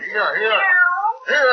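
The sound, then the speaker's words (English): A cat meows loudly in a hotel kitchen in a drawn-out, wavering cry, then starts a second meow after a brief pause. “Oh, you want to play with my cat?”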